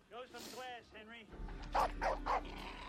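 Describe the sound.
A dog barks three times in quick succession, moderately loud, after a stretch of whining, voice-like tones. A low hum runs underneath the barks.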